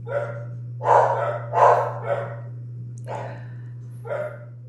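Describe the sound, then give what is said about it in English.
Two dogs bark back and forth, trading about six sharp barks at an uneven pace over a steady low electrical hum, with no talking. “We've got tag team barking.”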